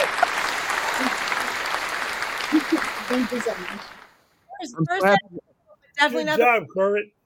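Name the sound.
audience applause and cheering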